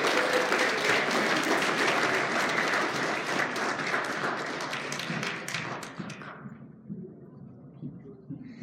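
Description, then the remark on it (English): An audience at HYH applauds a guest on a Mother's Day morning with dense, steady clapping that holds strong for about six seconds, then thins out and fades as scattered claps trail off into quiet. “Can y'all give her a hand clap, please?”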